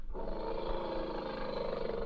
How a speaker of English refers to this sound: There he is. Is that it? I think the elephant deserves to have his say.